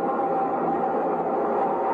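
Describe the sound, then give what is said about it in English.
A subway train rumbles steadily and loudly throughout, a dense mechanical roar with a faint whining tone riding on top, and no voices. “And between the subway trains and the soft clutchings of the mob, a man in a brown ready-made suit shouldered his way.”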